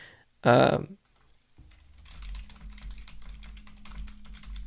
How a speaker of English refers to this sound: You can hear me typing, and those are basically the logs in my brain jumping away and catching fire.